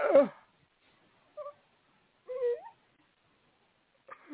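A person yawns, letting out a few whiny, squeaky vocal sounds that slide up and down in pitch, in short bursts separated by brief silences.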